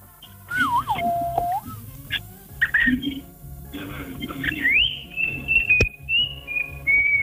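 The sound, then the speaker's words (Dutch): A pet bird sings in clear, whistled phrases that swoop and glide, with a few short chirps between longer sustained notes, while low voices murmur faintly underneath. “Ja, het is een type vogel.”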